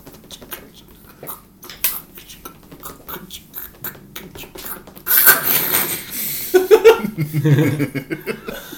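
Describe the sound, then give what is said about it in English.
A voice imitates a small embering fire crackling with a run of small, irregular mouth clicks and pops, then breaks into a louder, breathy burst that sounds like laughter. “Let's do a little embering fire.”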